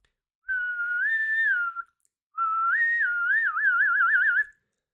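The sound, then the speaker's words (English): A person whistles two clear phrases, the first sliding up and back down, the second rising then warbling rapidly up and down in pitch, with a short pause between them; higher pitches come from increased air pressure behind the lips, lower pitches from decreased pressure. “When I whistle, what's happening is I'm increasing the pressure behind my lips and whatever, and to make the higher pitch sound, it's an increase of pressure.”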